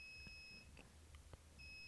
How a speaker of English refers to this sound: That beep can only mean one thing. Dinner is ready.